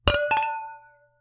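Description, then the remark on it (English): Two quick glass clinks in a toast with glasses of extra dry cava, close together, bright and ringing, followed by a clear tone that hangs and fades out over about a second. No voices. “I think we should cheers. Cheers to 2020.”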